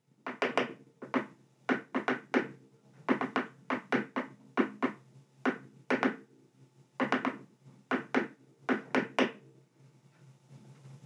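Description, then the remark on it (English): Morse code tapped out on a hard surface: sharp, woody knocks in uneven clusters of quick and spaced taps, steady and fairly loud, with no voices. “You say something in Morse code, and then when you're done tapping, can you hear these?”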